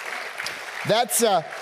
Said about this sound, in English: So give yourselves a big clap.